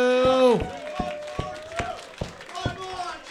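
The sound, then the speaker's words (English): An audience claps for two competitors at a battle: sharp hand claps land in a steady rhythm, roughly two or three per second, while a voice carries on underneath. The claps are crisp and evenly spaced rather than a dense wash of applause. “clap your hands one more time for these two.”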